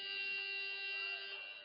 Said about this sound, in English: As the buzzer sounds.